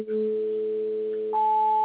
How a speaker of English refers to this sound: Okay, that sounds like it could be Jimmy's eight tones. That might be the eight tones.